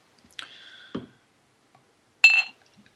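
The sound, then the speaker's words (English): A bottle of Goose Island Goose IPA beer, bought at a supermarket, being opened: a short metallic scrape with a ringing edge and a soft thud, then a pause and a brief, bright fizzing hiss. No one speaks. “Well, as I finished, I'm going to open up my next beer.”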